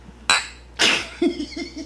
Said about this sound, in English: Clink! Yay! Clink.